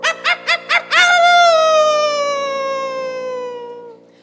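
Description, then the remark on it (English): A dingo howls: four quick, sharp yips followed by one long, drawn-out wail that slowly sinks in pitch and fades away. No one speaks. “A howl like that could only belong to one animal. Dingo.”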